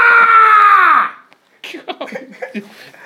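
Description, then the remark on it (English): A man lets out a loud, aggressive scream like a war cry, held for about a second before dropping away, then people start talking. “Go on, have a good scream.”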